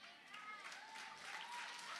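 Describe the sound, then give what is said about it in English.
An audience applauds in a steady, dense wash of clapping that holds even for two seconds, fairly soft overall, with a faint murmur of voices blended underneath; many young women are among those applauding. “There are so many young ladies who are applauding it who will still go learn the hard way.”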